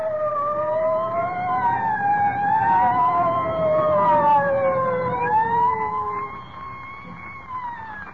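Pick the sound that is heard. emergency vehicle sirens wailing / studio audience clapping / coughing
emergency vehicle sirens wailing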